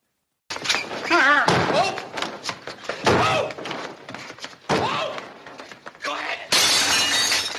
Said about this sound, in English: I have a clip of the slap. It's you want to hear it? It's pretty, pretty brutal.